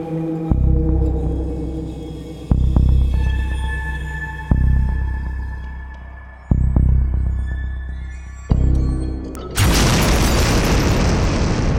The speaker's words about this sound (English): The door blasts open with an inhuman growl. Three humanoid creatures burst through the door into action.